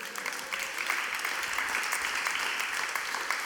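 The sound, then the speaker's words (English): An audience claps steadily for several seconds after hearing a quote from Pastor Gina, a dense, even patter of many hands at moderate loudness, with no voices standing out above it. “Give Gina a clap, would you?”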